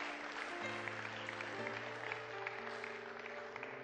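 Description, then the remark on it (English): An audience in a church applauds for people in a steady, dense patter of clapping, with sustained organ or keyboard tones holding underneath throughout. “And if you are in this church, oh yes, if you are clapping for them, clap for them.”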